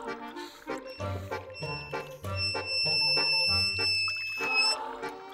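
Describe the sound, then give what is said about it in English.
Gulping water sounds during a water break, paired with high, sustained whistling tones over a steady thumping low rhythm, loud, with no talking. “Some of you people tweeted me about the whistle on the water.”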